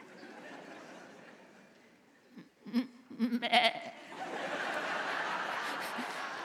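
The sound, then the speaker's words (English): A sheep bleats in a short, wavering burst of a few pulses near the middle, clear against a steady background hiss that grows louder afterward. “Have you ever noticed that the Bible never calls Christians lions? Powerful, strong, fearless. No, sheep.”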